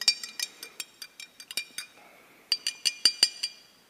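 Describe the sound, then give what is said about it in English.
Stirring a drop of something into a glass of water, with a spoon clinking repeatedly against the sides in a quick, uneven rhythm of bright, high-pitched taps, louder strikes toward the end; no one speaks. “Now this time, let's put a drop of something else and mix it up.”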